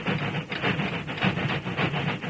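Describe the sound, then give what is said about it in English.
A steam train chugs with a steady, rhythmic run of heavy puffs and a low mechanical rumble, fairly loud, laboring up a steep grade and slowing until it is barely making headway, with no voices. “Then, forced to fight its way up a steep grade, the train slowed down till it was barely making headway.”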